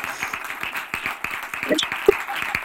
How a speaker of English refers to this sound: Yes, thank you. Please stop clapping. Thank you. That's enough. Thank you. No encore.